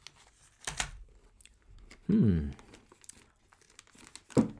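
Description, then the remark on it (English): A crisp snap as a piece is broken off something taken out of plastic foil wrapping, followed by a murmured voice and a few soft crinkling, crunchy sounds as it is tasted. “Let me break a piece off.”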